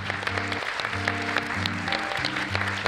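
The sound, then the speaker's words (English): An audience applauds panelists on stage at a live recording, a steady, dense wash of many hands clapping at constant loudness for about three seconds, with a low, steady tonal hum running beneath it. “Round of applause for our panelists.”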